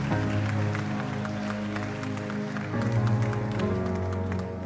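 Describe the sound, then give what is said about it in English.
An audience at a baptism claps for the newly baptized girl in a steady, dense round of applause over sustained tones of background music, keeping an even loudness for several seconds. “I'll give Amber another round of applause.”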